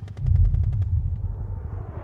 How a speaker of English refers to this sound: As we stood and fought, the sky turned red. The sound of explosions were ringing in our ears. The KLA militants had opened fire and we were under attack, but the Yugoslav army did not falter.